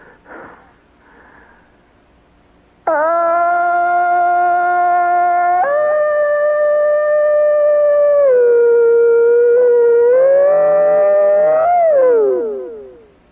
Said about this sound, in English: he hits that thing, the red light goes on, he tilts his head back, and his neck starts to bulge out. His eyeballs pop, and fantastic yell.